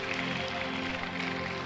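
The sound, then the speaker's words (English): A crowd claps for the Lord, thanking Him, in a dense, continuous patter of many hands, holding a steady level throughout with no single claps standing out and no voices. “Clap properly like it's to somebody important.”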